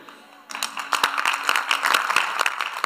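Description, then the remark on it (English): An audience breaks into clapping, many hands striking in a dense, steady patter with some sharper individual claps, starting abruptly after a quiet moment and continuing at a fairly loud level. “Oh, your clapping doesn't look like you are ready for it.”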